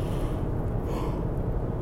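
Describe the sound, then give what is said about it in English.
A drawn-out yawn, a breathy, muffled exhalation lasting under two seconds at steady, moderate loudness, with no talking. “Excuse me, I keep yawning.”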